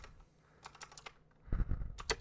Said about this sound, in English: I'm glad you got that mechanical keyboard so we can all hear you going clackety-clack-ty-clack. That's why I bought it, because I just love the...